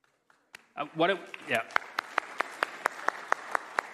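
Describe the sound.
An audience claps in steady unison for a person standing up to be prayed for, about ten sharp, evenly spaced claps at a brisk rhythm, following a brief murmur of voices at the start.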